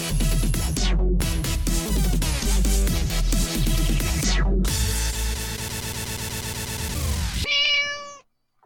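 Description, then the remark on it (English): Loud, busy music fills most of the stretch, then cuts off and a single short cat meow sounds clearly near the end. “It's National Cat Day, that just reminds me.”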